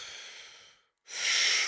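An airy breath tapers off, then after a brief pause a deep, loud diaphragmatic belly breath is drawn in, the stomach expanding while the chest stays still, swelling and holding steady. No one speaks.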